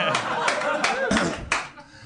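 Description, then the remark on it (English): Several sharp, forceful hand claps snap out in quick succession, each a loud crack over a steady background of people talking. “Jesus, that was an aggressive clap.”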